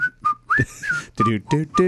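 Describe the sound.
Someone whistles a snippet of a TV theme tune: a handful of short, bright, high notes in a bouncy rhythm, fairly loud, with a breathy, voiced edge between notes.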